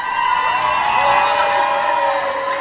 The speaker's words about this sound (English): Everyone is cheering